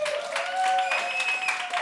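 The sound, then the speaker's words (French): An audience applauds to thank someone for a story, with steady, dense clapping that fills the whole moment at a fairly loud level, with a few sustained high tones rising faintly above the clatter. “Merci, on applaudit”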